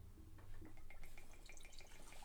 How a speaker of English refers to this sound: All right, so let's start drinking. I'll let you pour your first shot.